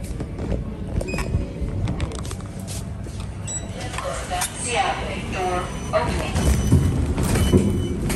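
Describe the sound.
Elevator doors slide open at floor zero with a mechanical whir and rattle over a steady low rumble, the motor noise rising midway through, with faint voices murmuring in the background.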